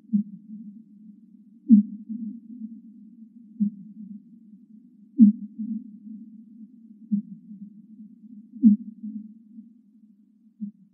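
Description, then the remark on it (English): A low, narrow underwater whale call in the ocean repeats as a series of deep pulses roughly every second or two, each followed by a smeared, reverberant tail of echoes, mostly in the ocean but also reflected from the interfaces beneath the ocean bottom. “And those echoes are the important things for my research, because those echoes are mostly in the ocean, but also actually reflected from the interfaces beneath the ocean bottom.”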